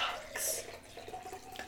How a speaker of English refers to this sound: Just pouring some more. Bubbly.